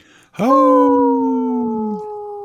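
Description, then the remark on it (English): A person imitates a wolf howl: one loud, sustained vocal note that swoops upward and then holds a steady pitch for about two seconds before cutting off. “I know you're a busy person, and you go through a lot of howling, so that sounded too realistic, but I appreciate that.”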